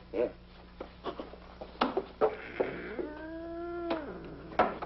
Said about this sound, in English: It's just a harmless little kitten.